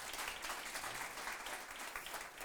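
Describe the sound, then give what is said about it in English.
A crowd claps steadily, a dense wash of many hands that stays even and fairly loud throughout, with no voices standing out. “So let me, guys, yeah, give it up. You can clap.”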